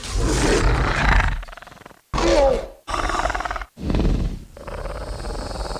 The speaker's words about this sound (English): You know, they made like some combination of goose sounds and like mating tortoise sounds, you know, to get the vocalizations of the raptors.